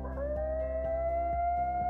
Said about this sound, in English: The coyotes howled and turned away.